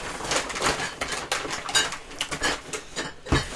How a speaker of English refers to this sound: Let's see what I got here. Reach into the old beverage bag.